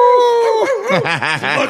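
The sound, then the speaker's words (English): A person imitates a coyote howl, like coyotes gathered over food they have killed, starting with a steady, high, wavering tone that breaks into several quick rising-and-falling yips. The imitation is loud and stands alone, without other talk. “Where like they all start howling as in like letting everyone know, hey, in the area we killed something.”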